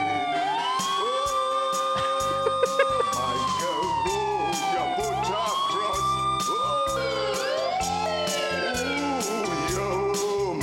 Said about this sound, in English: that siren that's louder than his vocals.